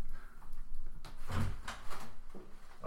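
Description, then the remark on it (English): A door opens with a solid low thud followed by a few scraping clicks and rattles, with no talking over it, as a letter is delivered. “Oh, is it something at the door?”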